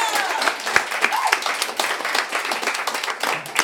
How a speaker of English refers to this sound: All right. A big round of applause